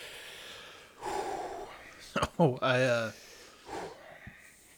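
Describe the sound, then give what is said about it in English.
Several sharp, hissing breaths drawn in through the mouth, with a short strained vocal groan in the middle, from someone whose tongue hurts after eating a very hot sauce. “This is, Yeah, my tongue hurts. Yeah. Breathing in helps.”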